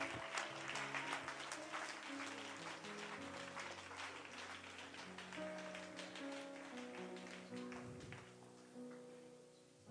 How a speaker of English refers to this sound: Can we just clap our hands to the Lord and give him thanks one more time? Hallelujah.